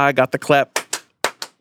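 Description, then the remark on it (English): A short burst of voice is followed by four sharp hand claps, struck in two quick pairs with a brief pause between them, each one loud and crisp, made as a sync clap at the start of a recording. “You can do your clicky thing. I don't need... You have a whole clapper.”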